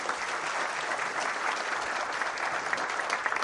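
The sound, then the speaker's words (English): An audience claps for visiting special guests, a brother and his parents, a dense, even wash of many hands that stays at a constant loudness for the whole stretch, with no voices rising above it. “So a little round of applause for them.”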